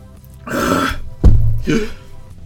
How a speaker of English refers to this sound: I wasn't expecting hiccups. I haven't seen other people do the hiccups.